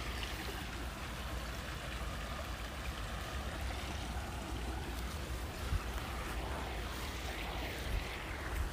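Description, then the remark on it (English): Moving water laps and churns in a steady, continuous wash, with a low rumble underneath and small splashes rising now and then. It stays even throughout, with no voices. “I just get caught, like, staring at this water. Just like an aquarium, kinda.”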